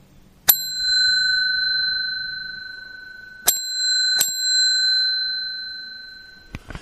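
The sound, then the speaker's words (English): A small hand bell decorated with flowers rings out three times in a basement bar: one strike, a pause, then two quicker strikes, each bright tone lingering and slowly fading, followed by a soft handling thump. “That's the little bell, the one with all the flowers, the ones I've been giving away.”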